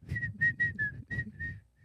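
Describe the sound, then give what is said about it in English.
A man whistles a short, bright tune of about seven quick notes, clear, over the steady low rumbling of a jackhammer he is operating. “Pretty, well, it's pretty scary because he walks around with, like, a jackhammer just, like, whistling.”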